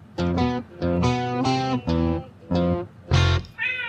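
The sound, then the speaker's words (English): A short burst of distorted, buzzy musical notes plays in a choppy rhythm as the end tag of a music track, then a brief cat meow closes it out at the very end. No one speaks. “The meow.”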